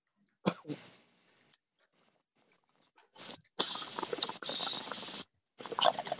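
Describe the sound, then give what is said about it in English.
A loud hissing inhale through a dab rig, the first dab taken, in two long drawn pulls after a brief sharp sound and quiet, then a rough exhale with a slight cough. “This is the first dab.”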